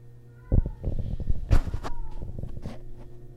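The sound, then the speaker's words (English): A cat yowls outdoors in drawn-out, wavering cries broken by harsher, scratchy bursts, fairly loud over a steady low background hum, with no one talking. “I think there's a cat in heat out there or fighting or something.”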